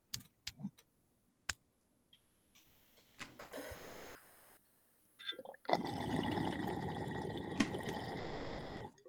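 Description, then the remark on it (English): A few sharp lighter clicks snap at uneven intervals as someone lights up to smoke Dolce Gelato, then after a pause a steady, loud hissing, bubbling rush sets in and continues to the end. No one speaks. “You're about to hear some lighters clicking and maybe some possible coughing.”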